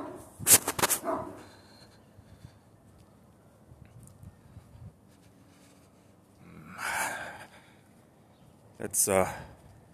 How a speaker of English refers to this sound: And another dog. That's 19 dogs over the course of the week.